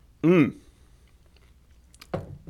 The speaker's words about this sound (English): I'm chewing into the microphone.